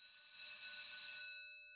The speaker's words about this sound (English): And that's our bell, which means we are almost done with this session.